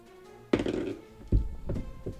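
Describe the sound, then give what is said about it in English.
A die drops onto a tabletop with a solid thunk, then knocks down again and settles with a couple of smaller, quicker taps. No voices are heard. “Did you drop it again?”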